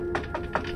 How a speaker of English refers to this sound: I knocked again.